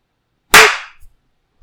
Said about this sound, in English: Okay, when it gets to the next, we'll do 20 seconds. Are we ready to clap?